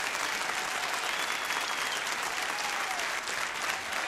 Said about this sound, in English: Standing ovation from a public radio crowd. Who'd have thunk it?